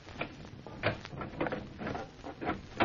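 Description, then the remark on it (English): Fiddly metallic clicking and scraping as a simple door lock is picked, a quick irregular series of small rattles and ticks as it is worked open, with no voices. “It was just a simple door lock.”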